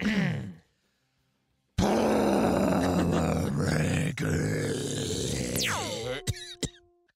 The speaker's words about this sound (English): I'll clear my throat.